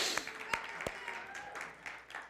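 Light, scattered clapping from a church audience for an upcoming guest preacher: a few sharp individual claps stand out over a soft, uneven patter of hands that lasts a couple of seconds, fairly quiet throughout.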